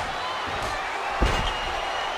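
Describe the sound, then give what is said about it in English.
A single heavy body slam thuds onto a wrestling mat about midway through as one wrestler hits another with an inverted backbreaker, loud, over a steady roar of arena crowd noise. “with an inverted backbreaker.”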